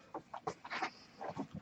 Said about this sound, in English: There's a dog licking my fingers.